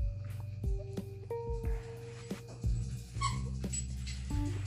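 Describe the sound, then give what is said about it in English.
Dogs whimper and whine in high, drawn-out tones, broken by a few sharp yips. The sounds are fairly loud, with no talking. “Pardon that, my dogs were distracting me.”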